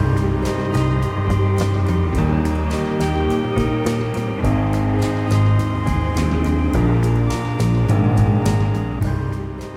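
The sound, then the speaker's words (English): An indie rock song plays steadily throughout, with sustained layered chords, a low bass line and regular drum hits keeping an even beat. The music is fairly loud, with no voices. “I think that it kind of lurks with kind of a majestic beauty to a really subdued conclusion, and I'm a big fan of that song.”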